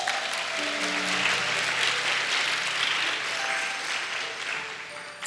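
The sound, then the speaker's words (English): Many people applauding steadily for several seconds for the ladies who put up the decorations, a dense, even patter of many hands clapping at once, fairly loud with faint murmuring voices underneath. “Clap for the ladies.”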